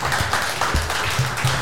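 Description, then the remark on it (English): A crowd applauds Lee Nichols, the absent winner of the vote, a dense, steady wash of many hands clapping at an even loudness for the whole moment, with a faint low hum underneath. “I notice he gets a round of applause and he's not here, and when we came up on stage, now.”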